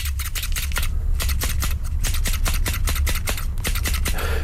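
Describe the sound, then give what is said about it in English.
Scissors are snipped as a musical instrument in a quick, steady rhythm, a rapid series of crisp metallic clicks played loud over a low background hum, with no voices. “as no one's ever played the scissors before”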